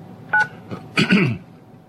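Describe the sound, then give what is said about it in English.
A phone keypad tone beeps once, short and clear, as a cell phone number is dialed, followed by a few soft muffled handling noises; no one speaks. “Let's see if I can get John on his cell phone, because obviously we're having some board op issues here today, and somehow he's not connecting.”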